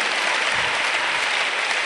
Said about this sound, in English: It's too beautiful. You can't stop clapping. Okay. Keep clapping for her.